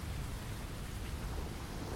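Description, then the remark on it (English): Steady, even rain hisses throughout at a beach on a vacation day, with a low, continuous rumble underneath like distant thunder. No voices, just a dense wash of falling water at a constant level. “He wanted to play on the beach one more time, but the rain didn't stop.”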